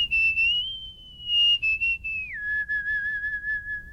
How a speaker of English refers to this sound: I am a whistler, a musical whistler.